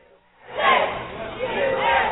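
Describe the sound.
A crowd with banners and balloons, welcoming two brothers home from the Middle East, erupts in cheers and shouts after a brief quiet moment. The excited voices blend into a loud, sustained roar that carries on to the end.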